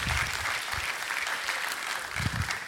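An audience claps steadily, a dense, even wash of many hands with bright crackle throughout, some heavier thumps underneath, holding at a fairly loud level for the whole stretch.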